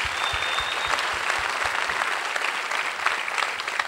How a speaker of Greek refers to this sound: Οπότε νάτος. Νάτος ήρθε. Ένα χειροκρότημα παρακαλώ.